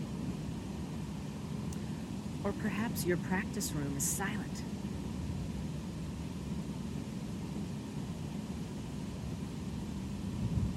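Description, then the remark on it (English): A waterfall's steady rushing roar fills the whole scene at an even, moderate level, with a person speaking briefly over it partway through. “Perhaps you can hear traffic, this waterfall, airplanes, the rustling of leaves.”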